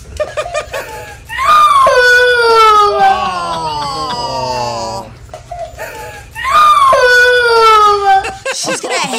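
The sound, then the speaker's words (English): A little girl wails in two long, high-pitched crying bouts, her voice wavering and breaking, separated by a brief gasping pause with faint sobbing breaths; she is crying because the family dog ate her Elf on the Shelf. “Here's the little girl crying about the elf on a shelf that the dog ate.”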